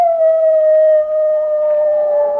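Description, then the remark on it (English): A single long wolf howl holds a steady, mournful pitch and slowly sinks toward the end, loud, with no other sounds around it. “Well, at least there aren't any annoying howling”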